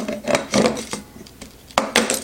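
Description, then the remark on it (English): Hard little knocks and clatters as ice cubes tumble loose from a plastic tray with a lid, coming out easily without being run under water, a few sharp clicks mixed with scraping rattles over about two seconds, with no talking. “will these come out of the container without, you know, running under water?”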